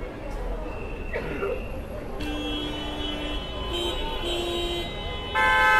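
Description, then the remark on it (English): A bus carrying a protest banner rumbles past amid street noise at a protest with hundreds of supporters and some yellow vests, its horn sounding in long, sustained blasts that shift in pitch and stop and start, loud, with murmuring voices in the background. “Here's the WikiLeaks banner bus.”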